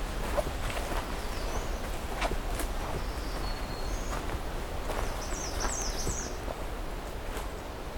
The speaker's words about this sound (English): A red start, golden crowned kinglets, black-throated green warblers here, ruby crowned kinglets floating around here somewhere. The ruby-crowned and the golden-crowned kinglets are at the same intersection here.